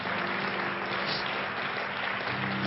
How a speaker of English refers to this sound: It's so good to see everyone that is in God's house. Why don't we give all of our guests a good hand clap today?